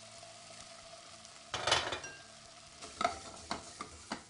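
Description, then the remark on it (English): Corn sizzles in a pan of oil for a very light fry, so it pops and caramelizes, with a steady crackling hiss, broken by louder scraping stirs around the middle and a few sharp clinks of a utensil against the pan near the end. “What we're trying to do is we're trying to do a very, very light fry on our corn.”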